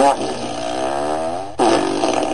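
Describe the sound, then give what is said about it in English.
A loud fart sound effect from a fart machine: a long buzzing, wavering blast of about a second and a half, then a sharp cut into a second short, sputtering burst. No talking. “Let me hit the fart machine.”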